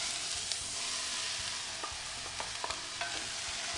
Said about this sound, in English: Okay, so I'm going to give my onions a stir because I'm starting to hear them sizzle, and I'm smelling all those organosulfurs.